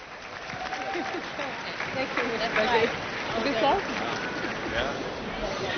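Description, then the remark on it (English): Scattered, hesitant, confused applause from an audience, uneven claps mixed with murmuring voices and a few scattered shouts, steady and moderately loud throughout. “All the confused applause is the best applause.”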